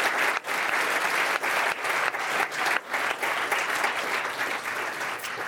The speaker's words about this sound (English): All right, let's give them a round of applause.